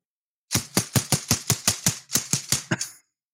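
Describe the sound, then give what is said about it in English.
A BB gun with no BBs in it dry-fires in a rapid, even burst of about a dozen sharp, hard clicks lasting around two and a half seconds, with a brief hitch near the end. No one speaks. “That's my BB gun, but it doesn't have any BBs in it.”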